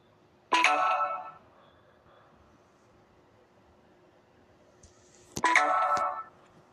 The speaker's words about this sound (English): My phone just said, like, the connection went down.